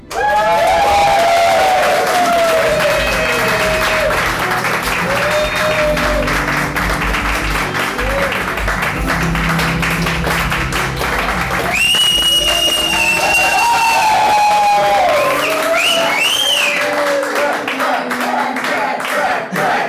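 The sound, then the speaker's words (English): A large audience applauds and cheers loudly and continuously as a caped Dungeon Master is introduced. Dense clapping, whoops and high-pitched whistles rise above the roar for about twenty seconds. “Never before has a nerd in the cape been applauded with so much gusto.”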